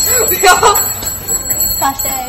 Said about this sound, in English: You're going to walk it out. And then I'll ring the bell.